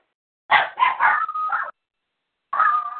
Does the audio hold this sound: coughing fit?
no